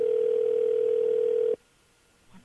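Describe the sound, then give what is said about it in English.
A single loud, steady telephone ring tone hums for about a second and a half, then cuts off abruptly into near silence with faint line noise, at the start of a phone call from White House Press Secretary Josh Earnest to Vin Scully. “I actually have the phone call from Press Secretary John Ernst Throw to Vin there.”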